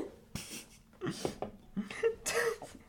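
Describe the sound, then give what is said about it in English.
A fit of spluttering coughs after choking on a sip from a can of Zevia, about four harsh, uneven bursts with strained, voiced gasps between them, fairly loud and with no talking. “And then you're like, dang it, I choked, I messed it up.”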